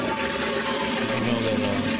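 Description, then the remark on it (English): A toilet flush sound effect: a steady, loud rush of water that holds evenly for about two seconds, a low hum running underneath and no voices. “Greg, do you know what the toilet one again was? Would you like to hear? Yeah, we're going to flush this lost”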